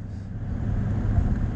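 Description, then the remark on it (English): A steady, low rumble of road and engine noise fills the inside of a moving car, constant and fairly loud, with a faint hiss above it and no talking. “how's Matthew recording and doing this? Well, I have a stand in my car.”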